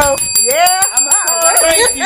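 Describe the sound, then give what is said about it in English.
A bell rings rapidly and continuously, its bright metallic strikes repeating in a quick steady trill for about two seconds, while a voice sounds over it. “I will ring the bell.”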